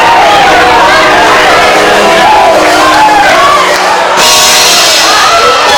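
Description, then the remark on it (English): A worshipping audience at a tent revival shouts and cries out together, many voices overlapping in a loud, continuous roar of ecstatic praise with rising whoops throughout. “Okay, so I see somebody shouting and moving, but the rest of y'all ain't saying nothing.”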